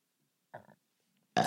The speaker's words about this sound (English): Excuse you, podcast burp.